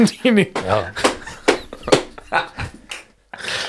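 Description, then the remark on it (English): A series of sharp slaps of hands against legs, made while standing, land at an irregular pace, mixed with voices and vocal sounds, with a brief silence before a final burst. “I slap my legs now that we're standing.”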